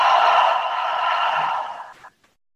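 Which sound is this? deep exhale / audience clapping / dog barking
deep exhale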